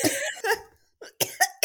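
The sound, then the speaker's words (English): A person coughs repeatedly: a rough, hacking pair of coughs, a short pause, then a quick run of three or four sharp coughs, with no talking. “I think we should start with you coughing.”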